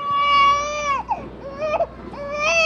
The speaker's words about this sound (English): There's also little bits of you, I understand, in some of the machines. Like, there's a machine over there that has your firstborn child's cry.